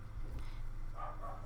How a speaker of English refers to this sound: my dog is barking. Yes, she really is. I can hear it.